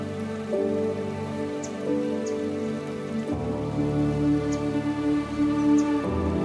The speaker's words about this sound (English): The rushing sound of the water is getting louder and louder as you approach.